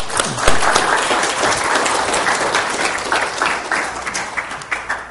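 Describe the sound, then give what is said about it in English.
A crowd breaks into loud, sustained applause, dense overlapping claps holding steady for several seconds before thinning slightly toward the end. “give a hard clap like that, you have to transition, right?”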